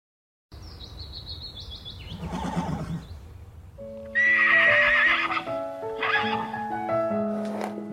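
A horse whinnies loudly, its shrill, wavering neigh rising and breaking, while hooves clip-clop unevenly underneath. Faint bird chirps sound in the background.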